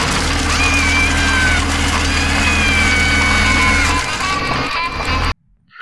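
A dense, loud jumble of five sounds at once: a steady plane-like engine drone, wavering cat meows and guitar strumming piled together for about five seconds before cutting off abruptly.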